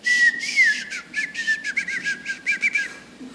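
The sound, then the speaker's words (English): A person whistles a rapid, warbling string of varied pitches with speech-like rhythm, fairly loud, imitating a whistled language for a few seconds with no talking. “But there are over 50 known whistled languages. that are just whistles.”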